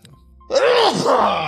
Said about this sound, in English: I'm going to sneeze. Hold on. Here's a big one. Okay.